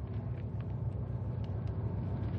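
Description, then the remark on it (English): A car engine hums with a steady low rumble as the vehicle drives along to pull up alongside another car, holding an even pace with no voices over it. “Pull alongside Pat's car, pal.”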